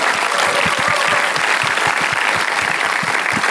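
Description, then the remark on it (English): A crowd applauds for Pastor Leo, many hands clapping in a dense, even patter that holds at a fairly loud level throughout, with a few sharper individual claps standing out. No one speaks. “How about a round of applause for Pastor Leo?”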